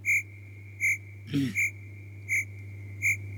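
Crickets chirp in short, evenly spaced bursts against a quiet background, with one lower, croaking call breaking in midway. No one speaks.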